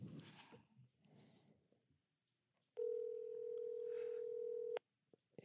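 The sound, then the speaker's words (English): A telephone ringback tone sounds on a call: a single steady, loud electronic buzz lasting about two seconds, preceded by faint muffled voices and rustling. “It's ringing.”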